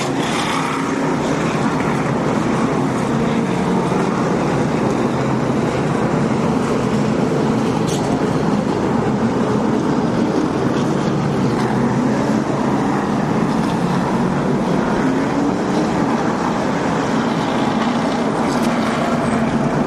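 Loud, steady roar of heavy engines droning continuously as racing trucks run on a track, with truck number 18 out in front, a dense wash of motor noise with no voices.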